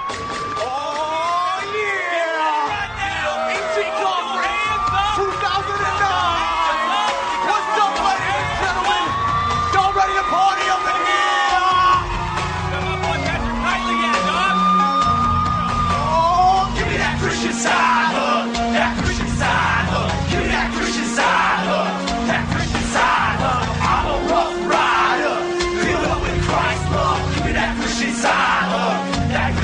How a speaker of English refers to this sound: Because this is one of those rap songs. They're rapping about side hugging. And let's see if you guys can catch the Star Wars reference in the song.